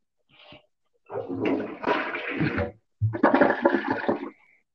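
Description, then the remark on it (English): A toilet flushes in two loud, rushing bursts of swirling water with a short pause between, after a faint click of the handle. No one speaks. “If y'all heard that was a Torsi flush, ladies and gentlemen.”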